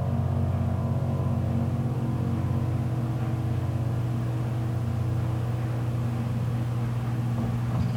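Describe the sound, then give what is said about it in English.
A clothes dryer runs steadily, a continuous low droning hum with a faint whirring rumble that holds an even level throughout, with no voices. “Yeah, you know, you hear the dryer in the background.”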